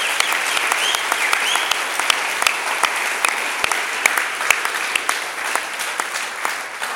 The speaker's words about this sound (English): So a big round of applause for Professor Stephen Finney.